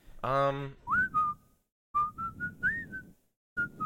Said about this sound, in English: Isn't that a whistling song in The Great Escape as well? What's that song?